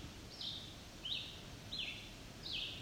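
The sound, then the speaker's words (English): A red-eyed vireo sings a steady string of short, high whistled phrases, four in quick succession with brief pauses between, soft over a low background hiss. “And the other bird going on and on, that's a red-eyed vireo.”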